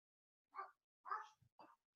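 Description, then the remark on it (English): The speaker's dog barks a few times in short, sharp bursts, fairly quiet, with brief pauses between barks and no voices. “My dog won't start barking. I'm sure you can hear that.”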